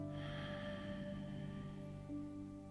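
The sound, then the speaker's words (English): A long, slow, deep breath drawn in through the nose during a guided breathing exercise, a steady soft hiss lasting a few seconds, quiet over a faint sustained tonal hum. “Last big deep inhale, breathing in”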